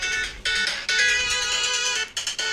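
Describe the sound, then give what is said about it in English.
A phone ringtone plays loudly, a bright electronic melody of repeating tones with brief gaps between phrases, ringing continuously with no one speaking; it is an incoming call from a telemarketer whose number had been blocked. “Freaking phone call from, like, telemarketer that I had that number blocked.”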